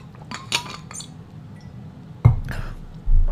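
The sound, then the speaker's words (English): Light glassy clinks and faint handling sounds as someone takes a swig of water, followed by a sharper knock and a low thud as the glass is set down. No talking. “And I'm going to take a quick swig of this delicious water.”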